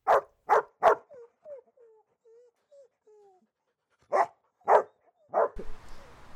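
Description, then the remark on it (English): A large white dog with brown markings barks sharply three times, whines softly for a few seconds, then lets out three more loud barks, with no talking. “is a large white dog with brown markings.”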